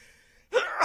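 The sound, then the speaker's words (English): A single sneeze bursts out after a moment of near silence, a loud, breathy, noisy blast that holds briefly before cutting off. “Bless you.”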